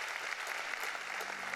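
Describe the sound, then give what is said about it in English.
A church crowd claps their hands for a young woman who shared her story, a steady, dense wash of applause, many overlapping claps blending into continuous noise with no voices standing out. “Come on, can we clap our hands?”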